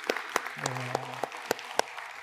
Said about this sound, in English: And so can we just give one more round of applause for everybody that was involved?